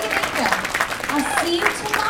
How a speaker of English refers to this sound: So can we get a massive round of applause